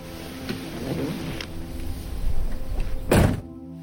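A truck door clicks open as a person leaves a station and jumps into the truck, then shuts with one solid slam near the end, over a steady low engine rumble. No one speaks.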